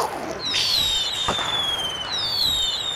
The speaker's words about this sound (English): Well done. Yeah, fireworks.